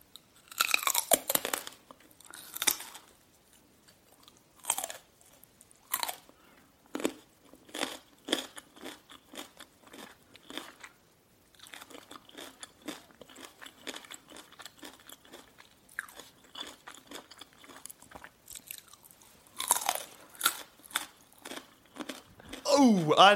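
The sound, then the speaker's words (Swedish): A person eats very close to a microphone for ASMR, with wet chewing, crunchy bites and smacking mouth sounds, repeating irregularly and filling the whole stretch, loud with no talking. “Det är alltså en person som äter väldigt nära en mikrofon i 16 minuter”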